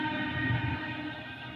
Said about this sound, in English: I don't know why I care about the train today, because I'm not recording.